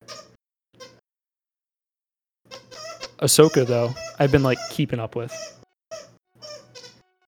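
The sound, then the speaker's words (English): A female pet cat squeaks loudly in a short burst of high, wavering cries, with a person talking quietly before and after. “You hear her fucking squeaking that?”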